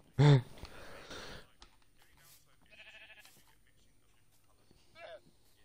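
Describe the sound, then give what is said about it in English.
A blue sheep bleats loudly and briefly near the start, followed by a couple of fainter, shorter bleating calls over quiet background noise. “I've got a blue sheep in here already.”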